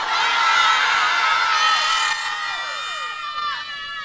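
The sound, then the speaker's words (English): A large crowd screams and cheers loudly and continuously, many overlapping high-pitched voices filling the space, easing slightly toward the end with scattered shrieks rising above the roar. “Are you screaming now?”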